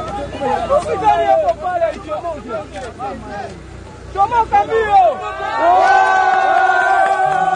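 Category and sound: crowd, crowd cheering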